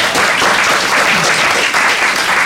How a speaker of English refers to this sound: Okay, a round of applause